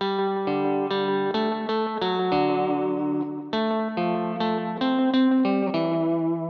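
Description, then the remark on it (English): An electric guitar plays a steady riff of clean, ringing notes through an echo effect programmed into an HX Stomp unit, each attack blurring into the next and keeping the tone sustained and full. No one speaks. “And I've programmed this into my HX Stomp. And sort of the difference in echoes”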